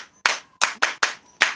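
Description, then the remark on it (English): Several people clap their hands for Jesus in a loose, uneven rhythm, five sharp bright claps in quick succession with short gaps, fairly loud and with no talking. “Clap your hands for Jesus. Then now, clap your hands for yourself.”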